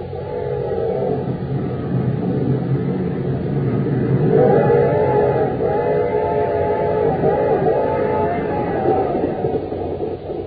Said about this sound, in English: We find them now on a fast express train roaring into Acme City.